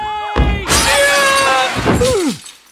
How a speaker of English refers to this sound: Or Grandpa Simpson bangs on the glass and falls through it.